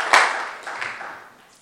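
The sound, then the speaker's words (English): An audience at a church service claps their hands together for the Lord: a sharp burst of many overlapping claps that quickly settles into a softer, fading patter of scattered clapping, with no talking. “Clap your hands together for the Lord and you may be seated.”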